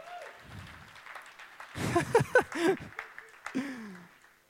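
A short burst of audience applause swells up and fades after a couple of seconds, with a few voices and light laughter mixed into the clapping.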